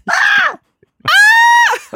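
A person lets out two loud, shrill screams, a shorter wavering one, then a brief pause and a longer, sustained, piercing cry, with another vocal burst starting right at the end.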